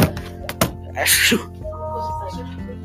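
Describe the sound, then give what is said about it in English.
A single sharp, hissy sneeze from someone wearing a face mask at school bursts out after a couple of quick clicks and a short intake of breath, then fades into a low, steady background hum. “Oh, for, I have to sneeze, boys.”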